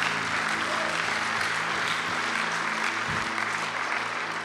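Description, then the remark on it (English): An audience claps their hands for the Lord in a sustained, dense wash of applause, steady and loud throughout, with a faint murmur of voices and a low hum underneath. “Now, come on, give the Lord a hand clap right now.”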